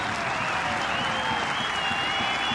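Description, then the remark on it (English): Steady applause from a large outdoor golf gallery at a major championship, dense overlapping clapping that rolls on evenly throughout, with a faint murmur beneath it, as fans applaud a veteran golfer. “Same applause from the galleries.”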